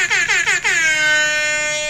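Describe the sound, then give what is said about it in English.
A loud electronic air horn from a phone air horn DJ app blares in four rapid stuttering bursts, then holds one long sustained blast, bright with no voices. “Here's the phone air horn DJ here real quick.”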